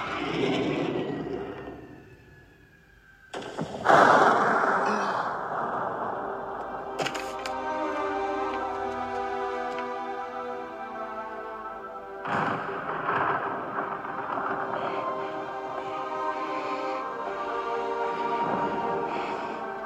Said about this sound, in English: he like strikes the cannons thing to spark it with his metal claw gripper thingies and fires the cannon at Poe, which hits him, sends him flying out of the factory out into the middle of the river.